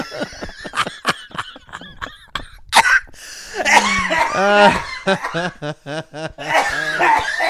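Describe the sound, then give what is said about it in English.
A burst of sharp, repeated coughs breaks into wheezy laughter, then more coughing and laughing tumble together in a loud fit lasting several seconds. “almost dies cough laugh.”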